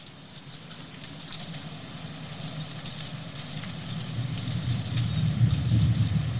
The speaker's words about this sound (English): Now let's switch up and do some distant thunder.